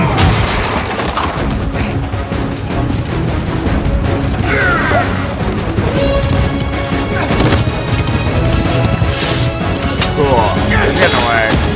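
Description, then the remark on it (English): A chariot overturning and crashing, heard as a loud, sustained jumble of booming impacts, clattering and smashing that runs the whole time, with indistinct voices mixed into the din. “Oh, they flipped the chariot.”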